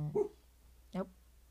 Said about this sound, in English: The bean is barking. The bean has woofed. I think someone's outside.